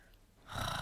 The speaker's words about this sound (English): Okay, let's breathe together. Oh. Ew. If you could open your mouth when you do these breathing exercises, that would help a lot.